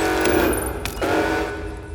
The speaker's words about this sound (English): Wow, that really, really does get your ears there. My ears are bleeding. Well, which one is it? I mean, there's so many, I lose track. The time ship alarm. The TARDIS alarm.